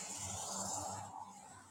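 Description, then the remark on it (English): A steady wash of road traffic noise in Northern Ohio, low engine rumble beneath a broad hiss of passing vehicles, continuous throughout with no voices. “All right, we're going to wrap things up because it's getting loud in the traffic area we're in today.”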